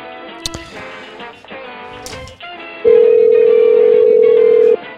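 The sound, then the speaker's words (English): A phone call being placed: brief dialing beeps and clicks, then a loud, steady ringback tone holding for about two seconds before cutting off, with no voices. “We're going to give her a call.”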